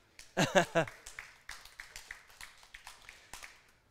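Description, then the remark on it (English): A small group of ten people gives a short round of sparse, uneven clapping that thins out and fades, following a few loud vocal bursts at the start. “And the 10 people that were here clapped.”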